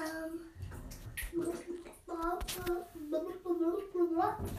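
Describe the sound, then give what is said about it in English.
A child imitates a fish with a string of wet, burbling vocal squeaks and hums, broken by short breathy puffs and pops, fairly loud and continuous throughout. “can you do an impression of a fish? What does a fish sound like?”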